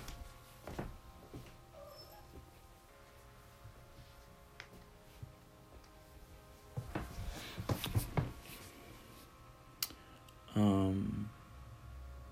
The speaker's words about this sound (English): I think I'm gonna crack my door a little bit. 1 second.